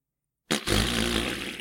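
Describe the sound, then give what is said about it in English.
A loud, buzzy mouth raspberry mimicking a fart, made by a man with his mouth, erupts after half a second of silence and rattles on steadily for over a second. “Let the record show that … has made a fart noise. Or a raspberry. With his mouth.”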